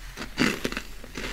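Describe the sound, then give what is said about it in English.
Crunchy parmesan crisps made from parmesan rind being chewed, a series of sharp, crackly bites in quick irregular bursts, moderately loud with no talking over them. “Like really satisfying to chew through.”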